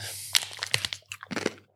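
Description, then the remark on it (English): Crisp crunching of a spicy tortilla chip being bitten and chewed, a rapid series of sharp, brittle cracks in two bursts with a brief pause between, no talking. “Make sure you chew it well.”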